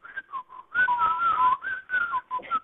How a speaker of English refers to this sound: What about Ray Pruitt, the tow truck driver? Noonan as Hanson John Pruitt. Whistling a bit of East of Eden. I'm not sure, but he might have been whistling a bit of the theme.